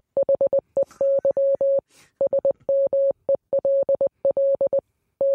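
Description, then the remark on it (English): A steady, mid-pitched tone keys on and off in quick dots and longer dashes, grouped into bursts with brief pauses: clean, loud Morse code beeps with no voices. “I'm fluent in over 6 million forms of communication, including Morse code and profanity in American Sign Language.”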